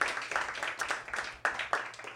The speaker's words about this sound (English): One more round of applause for Jordan Rands.